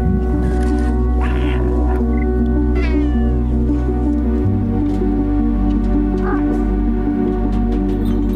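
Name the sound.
cat meowing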